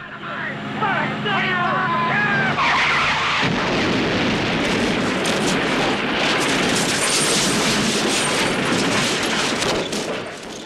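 A Trans Am's engine whines at high pitch as it reverses for a couple of seconds over dynamite in the road, then a loud, sustained explosion blasts the car to pieces and roars on with dense crackling and rumbling to the end.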